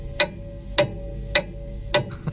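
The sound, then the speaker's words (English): A clock ticks steadily, four crisp, evenly spaced ticks about half a second apart, with a low constant hum running underneath and no voices. “That's a clock.”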